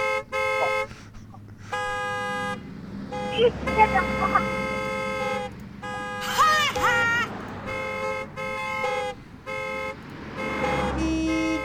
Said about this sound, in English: Hello? We are here at the library entrance. You don't hear the honking?